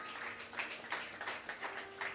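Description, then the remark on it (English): A group claps their hands in appreciation of a pastor, a soft, scattered patter of applause with irregular bursts swelling and fading over about two seconds, no voices standing out. “Let's clap our hands.”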